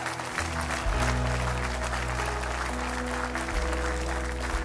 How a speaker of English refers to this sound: Give the Lord a clap offering.